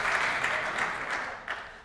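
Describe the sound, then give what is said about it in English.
A crowd at a church service applauds steadily, a dense wash of many hands clapping at once that holds fairly loud throughout with no voices breaking through. “First the law, then the clapping.”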